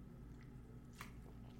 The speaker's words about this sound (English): Hold on. Let me take a pause. I'm feeling a little parched. Take a sip.